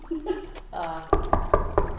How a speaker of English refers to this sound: She's going to knock.